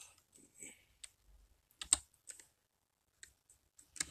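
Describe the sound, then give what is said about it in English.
Irregular bursts of computer keyboard typing as someone types in a YouTuber's name to look up its spelling, with sharp clicks in uneven clusters separated by short pauses. The keystrokes are moderately loud, with no talking. “So I'm just typing it in, if that's what you're hearing.”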